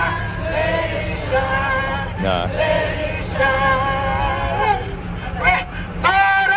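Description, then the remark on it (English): A crowd chatters steadily at an event, many overlapping voices blending into a continuous hubbub with a few louder voices rising briefly above the murmur, no single speaker clear. “Half that crowd is Secret Service.”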